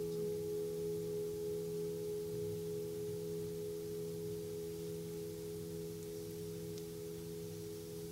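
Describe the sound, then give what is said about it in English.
A Tibetan singing bowl hums with a steady, sustained ring, its low, layered overtones holding evenly and softly throughout with a gentle wavering shimmer, and no voices present. “Tibetan Singing Bowls”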